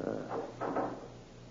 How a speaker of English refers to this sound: Just a moment, till I close the fire door.